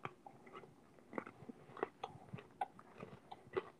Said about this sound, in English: So I'm going to eat it, and I'm going to keep my mouth closed like a human. No, well, just chew like a normal person. We want to hear the chewing.